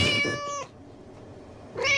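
A cat meows twice, loud: a drawn-out, strongly tonal cry, a short quiet pause, then a second meow starting near the end. No one speaks.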